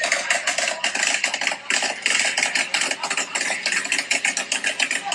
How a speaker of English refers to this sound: It's actually balloons being popped. What the heck? It is balloons being popped. I was so sure that was fireworks.